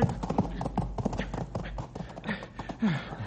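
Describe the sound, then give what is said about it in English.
A horse's hooves clatter in a quick, uneven run of clip-clop beats as it runs wild near a canyon edge, fairly loud, with a brief voice surfacing near the end. “I was sure he was going to pitch us both over the side, stupid horse.”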